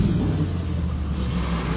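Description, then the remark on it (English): A sports car engine revs, a deep, throaty rumble holding fairly steady for a couple of seconds with no voices over it. “I got a whip. I got a car. Got right here.”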